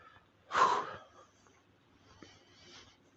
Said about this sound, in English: So I'm walking up a hill here. Sorry about my heavy breathing.